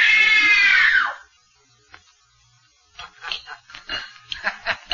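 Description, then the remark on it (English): A woman lets out a loud, shrill scream of terror lasting about a second during a scream test directed by Mr. Denham, which cuts off into a brief silence before a voice begins speaking. “It was only a simple scream test, just to see how well Ann can follow direction.”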